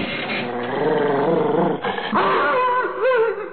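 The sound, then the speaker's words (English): A frightened male dog growls low and continuously, crouched in a corner, then breaks into higher whining whimpers, sounding agitated and fearful, with no one speaking. “What the devil's the matter with you? Oh, come now, boy. Are you a dog or a mouse?”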